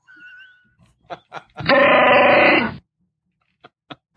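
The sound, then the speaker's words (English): A long, loud burp right up close, a rough guttural rumble lasting about a second, framed by a few soft clicks and breaths before and after. “I burped right in your face.”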